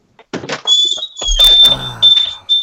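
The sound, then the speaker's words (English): A garage door opening, with a steady high mechanical whine over rattling, clunking movement and a brief low rumble, running continuously for a couple of seconds. “Garage door.”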